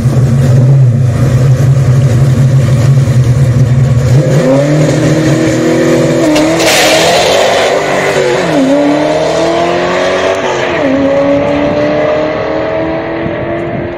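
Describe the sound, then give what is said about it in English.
A loud manual-transmission drag car on slick tires holds at high revs, then launches and accelerates hard through several manual gear shifts, its pitch climbing and dropping with each change. It pulls slightly to the right on the launch. No one speaks. “So once you understand how to launch a stick car with slicks, knowing what air pressure does to the car, this, even though it goes right a little bit, is actually a pretty good launch.”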